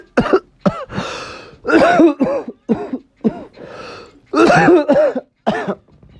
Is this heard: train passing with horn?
no